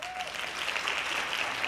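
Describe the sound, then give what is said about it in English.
A short burst of hand clapping, a dense, steady patter of many quick claps at an even, moderate loudness, with no one speaking over it. “Hand claps to that.”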